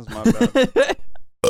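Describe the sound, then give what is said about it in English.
A short, weak burp rumbles out in a few croaky, stuttering pulses, then a brief pause and a final throaty bit. “Oh, a burp? Yeah. That was all a right. Weak one.”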